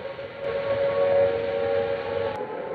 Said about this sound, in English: This is Trafalgar Square. The noise that you hear at the moment is the sound of the air raid sirens. I'm standing here just on the steps of St. Martin's in the Fields.